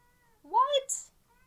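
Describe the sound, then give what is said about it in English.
A single loud meow from Max, a large black cat, rising and falling in pitch, followed by a brief breathy hiss-like tail, with faint background hum before and after. “Max is feeling very, very mouthy.”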